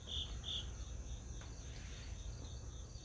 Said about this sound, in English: There was one time there was like a cricket in my room. I heard that shit. I was like, yo, what the fuck? I killed one. I couldn't find that shit. And I found it and I fucking killed it. Fucking crickets.